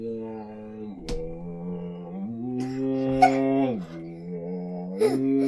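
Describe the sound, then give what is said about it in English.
A voice imitates a bowed cello with long, sustained low notes. It slides up and down between a few pitches in a continuous droning hum, broken by a couple of brief clicks. “I know what a cello sounds like.”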